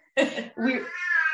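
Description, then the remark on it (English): A cat meows loudly, a short rough call followed by a longer drawn-out tonal meow, with no talking during it. “Excuse the kitty.”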